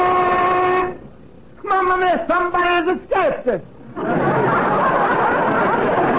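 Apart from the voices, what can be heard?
factory lunch whistle blowing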